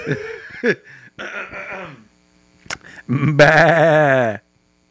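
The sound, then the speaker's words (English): A person does a loud, wavering sheep bleat impression, a few short nasal bursts building to one long quavering baa, with bits of laughter mixed in. “Listen, if there's no other reason to get Apple Music, I if there's try, no other reason to get an let iPhone, me get my fucking impression out of a fucking sheep.”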